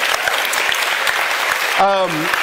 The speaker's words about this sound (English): And I know some of y'all want to clap, so I'm going to go ahead and give you permission if you want to.